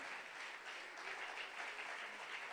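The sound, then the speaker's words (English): An audience claps together in a dense, sustained wash of applause, steady and bright throughout with no voices standing out over the noise. “Till I tell you to stop, please go ahead.”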